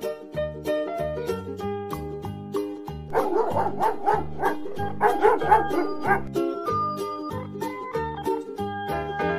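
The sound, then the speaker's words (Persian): A house dog barks repeatedly in a cluster of sharp yaps midway through, set over a bouncy instrumental tune with a steady bass line that plays throughout. “حالا سگ خونمون توی خواب شیرینه، شاید داره توی خواب یه استخون میبینه.”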